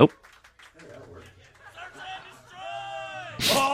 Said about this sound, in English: Dude, you just have people that are so excited, they're just like, can't not yell.